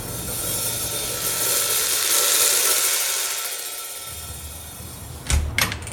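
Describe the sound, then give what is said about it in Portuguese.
A drawn-out, grinding creak of a door being slowly opened by an orderly bringing test results swells and fades over several seconds, followed by a couple of sharp knocks from the latch or frame. No one speaks. “A porta abre-se lentamente e, antes de entrar, a servente espreita para a sala.”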